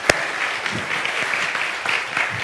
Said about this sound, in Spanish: Les voy a dar otra pregunta para que se vayan calentando los hermanos, que se vayan animando. Denle un aplauso a los que se están animando ya.